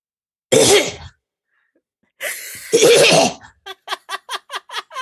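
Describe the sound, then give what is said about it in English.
A person imitates the cough of a sheep in a field behind a house with harsh, raspy vocal bursts: one short hack, a pause, then a longer rough fit, trailing into a quick series of about eight clipped, rhythmic pulses. “the window will be open and there's a field behind our house and it's got sheep in. And one of them will start coughing and I'll just be laughing to myself in the shower.”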